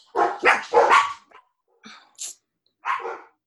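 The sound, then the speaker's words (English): Dogs bark, starting with three loud barks in quick succession, then a few scattered, softer barks and yips after a short pause, with no talking. “Well, you know, the dogs are I'm just kidding.”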